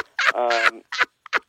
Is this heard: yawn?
no